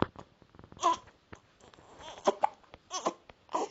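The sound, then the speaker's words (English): A baby girl with hiccups fusses and whimpers, with short hiccup-like catches breaking up the small cries in an uneven rhythm, fairly quiet overall and with no one else talking. “See, she's got hiccups at the moment.”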